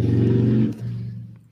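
A motorcycle taking off in a neighborhood: its engine revs hard with a deep, buzzing low growl, dips briefly as it shifts gear, then pulls away at a steadier pitch and fades out. No one speaks.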